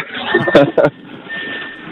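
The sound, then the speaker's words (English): Choppy, garbled phone-call audio as a caller's car Bluetooth connects: muffled voice fragments break up through a thin, band-limited line, with crackly hiss and a faint steady tone running underneath. “you know, when you get into your car and the Bluetooth doesn't like kick in right away.”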